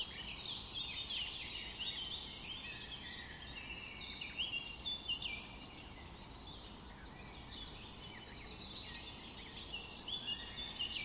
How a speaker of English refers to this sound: The sounds of birds chirping, water gushing, leaves ruffling is what they will lose, fear the residents of Molem in Goa.